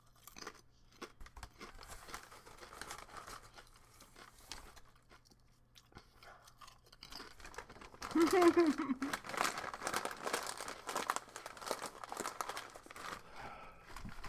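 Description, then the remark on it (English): Crinkling of a chip bag and crunchy chewing of chips, growing louder after a quieter stretch, with irregular rustles and crunches continuing to the end. “Since Tim is away, I can eat chips.”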